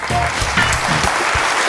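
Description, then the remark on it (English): Steady applause fills the whole moment, a dense, even patter of many clapping hands at fairly high volume, with a faint trace of voices underneath. “I'm giving you applause and the podcast again.”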